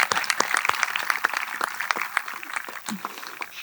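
An audience applauds steadily for a student of the class of 2022, many hands clapping in a dense, crackling patter with sharper individual claps standing out, holding a fairly even loudness throughout.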